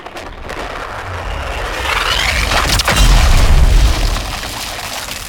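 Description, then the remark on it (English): A drop capsule comes in after re-entry: a broad rushing roar swells steadily, then a heavy, deep boom hits and rumbles loudly for about a second before easing back into the roar. “ETA to drop capsule re-entry 20 seconds.”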